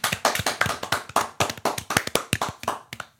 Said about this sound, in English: Hand clap.